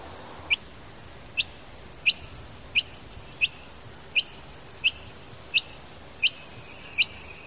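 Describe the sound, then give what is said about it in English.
A noisy miner, a gray bird, gives a steady series of about ten sharp, high chirps, evenly spaced less than a second apart, clear over a faint background hiss. “As it happens, the school grounds also receive plenty of visits from a gray bird known as the noisy miner.”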